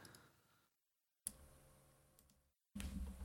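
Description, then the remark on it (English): Soft, quick clicking of keys being typed on a computer keyboard, faint, coming in short bursts separated by brief pauses of silence. “As I'm typing.”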